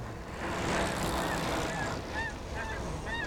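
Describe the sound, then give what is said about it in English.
A flock of geese honks repeatedly in short, overlapping calls over a dense, continuous background rumble, the honks growing more distinct toward the end. “Let's have those geese again, Sam.”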